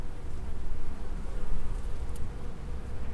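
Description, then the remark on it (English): A dense, steady buzz of many honeybees at hives kept under an ash tree, a continuous low drone that swells and dips slightly with no voices present. “You still got bees? You're still so hives.”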